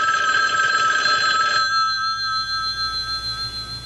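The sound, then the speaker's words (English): A telephone rings on an outgoing call from the Real Talk hotline: a bright, buzzing ring for about a second and a half, then a fainter lingering tone over a low hum, with no one speaking. “Hold on, it's ringing.”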